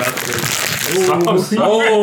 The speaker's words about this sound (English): Wait. It's not going to make a sound. Wait for it. Just make sure you hold it up to the microphone when you are crinkling the